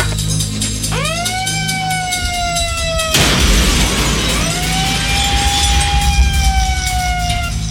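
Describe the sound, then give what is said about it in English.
A loud electronic siren from a megaphone horn winds up and holds its wail, cuts off in a harsh burst of noise, then rises again and sustains. “pulls out a siren. Basically, it's a mega horn, and here you go.”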